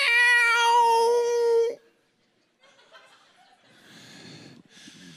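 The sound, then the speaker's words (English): A person imitates a cat with one long, loud, drawn-out meow, followed by a pause and then quieter breathy snorting or chuckling sounds. “See if I've got any future in cat noises and cat imitations.”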